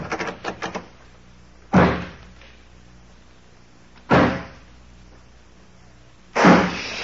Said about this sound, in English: Okay, give them to me. I'll lock this door on the outside.